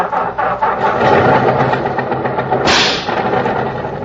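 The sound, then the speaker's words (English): A car engine with a ping cranks and turns over, settling into a steady, loud rumble with a sharp hissing burst partway through, with no talking. “Gotta do something about that ping in the engine.”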